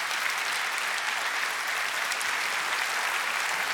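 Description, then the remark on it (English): A large church audience applauds steadily for youth ministry leaders, the dense clapping sustained and even throughout without pauses or voices standing out. “Can you guys give these guys a huge round of applause?”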